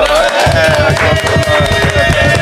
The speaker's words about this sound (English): Okay, let's clap it up.